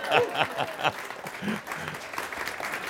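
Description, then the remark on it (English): A short burst of applause from a small group, steady dense clapping at moderate volume, with a few voices calling out briefly at the start. “And I should get an applause right now.”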